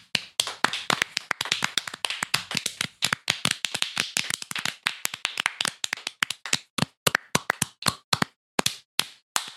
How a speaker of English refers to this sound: To all of our listeners. We got to layer the claps so it sounds like a lot.